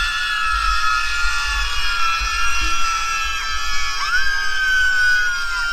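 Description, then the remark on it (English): A large crowd of protesters against the overturning of Roe v. Wade screams and shrieks continuously, high-pitched voices piling over one another in a dense, sustained roar with occasional rising yells cutting through, steady and loud throughout. “Do they not sound like a bunch of screaming toddlers?”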